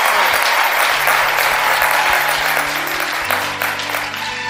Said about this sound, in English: Well, let's first of all give Pastor a round of applause for just obeying God. And give God a round of applause for having you covered.